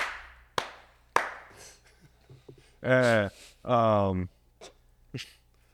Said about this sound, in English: So, no, just the clapping. You don't need the story.